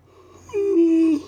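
A person yawns out loud, a single drawn-out, breathy vocal tone that rises abruptly, holds steady and slightly falls for under a second, with low background hum.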